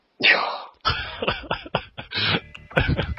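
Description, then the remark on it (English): A single loud sneeze erupts as a sudden, harsh burst of breathy noise, followed by a stretch of murmured vocal sounds. “Thank you for sneezing again.”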